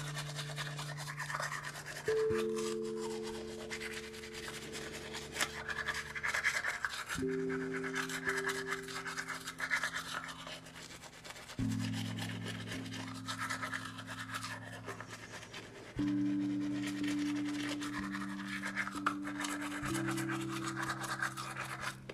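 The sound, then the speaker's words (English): Steady, scratchy toothbrush scrubbing runs throughout, a continuous rasping bristle sound over sustained low music chords that shift every few seconds. No one speaks. “Alright, now that I've finished brushing, I'm gonna put my phone farther away from the faucet so you guys don't hear it as loud.”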